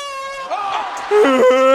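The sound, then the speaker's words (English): A loud, wonky air horn blast, blown by wrestler Triple H at wrestlers huddled together, with a wavering, bending pitch that cracks and jumps between notes, lasting under two seconds with no talking. “Yeah, that was an all-time wonky air horn noise.”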